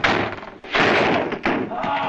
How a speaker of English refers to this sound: Shut that door!